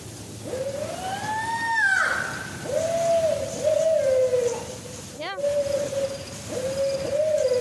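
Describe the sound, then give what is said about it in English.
An owl hoots in a string of long, wavering tonal calls, some rising into higher swooping notes, clear, with a brief dry rattle partway through. “And also, as the joke goes, it's always fucking owls.”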